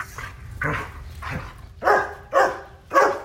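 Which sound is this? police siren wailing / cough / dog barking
dog barking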